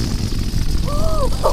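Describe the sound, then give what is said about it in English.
A balloon deflating gives a short, wavering squeal of about half a second, then a quick sputtering burst, over a steady low rumble of background noise. “And then you hear a sound like a balloon deflating.”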